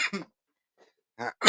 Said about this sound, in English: excuse me, guys. I'm having a coughing fit over here.